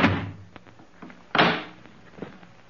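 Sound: front door being opened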